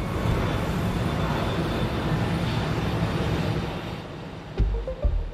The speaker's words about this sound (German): Das war der A380, ein Großraumflugzeug mit 2 durchgehenden Passagierdecks, das größte Verkehrsflugzeug in der Geschichte der Luftfahrt. 500 Passagiere finden hier Platz, die auf 2 Etagen sitzen.